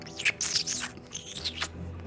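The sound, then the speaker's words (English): A voice imitates a character turning into a rat, with a quick run of high, thin squeaks and chirps, several short bursts spread over about two seconds at moderate loudness, with no words spoken. “What if she just started turning more into a rat? Have you tried to speak to her? She's just squeaking right now.”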